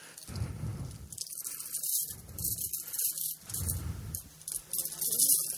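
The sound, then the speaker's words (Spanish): Coins jingle and clink in several bright bursts as a handful of coins is handed over to someone, with brief pauses between the rattles. “¿Quisieras estas monedas? ¿Las quieres todas?”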